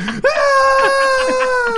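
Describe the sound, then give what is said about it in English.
A person imitates a scream with a single sustained, high-pitched wailing cry that holds steady for nearly two seconds after a brief low note. “Don't do what? The scream.”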